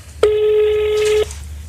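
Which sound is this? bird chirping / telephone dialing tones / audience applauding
telephone dialing tones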